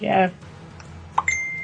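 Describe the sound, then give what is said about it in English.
A phone message notification chimes: a soft click followed by a steady, high electronic beep that holds until the end. A brief voice is heard just before it, and the background is quiet. “Like when I send a message, I can tell when you get it.”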